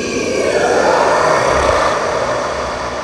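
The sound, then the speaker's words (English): During combat in a tabletop role-playing game, a voice imitates a monster's deep scream: one loud, harsh, raspy roar held steadily for about three seconds with a gravelly, growling texture and no words. “This thing starts to scream in a very, very deep voice.”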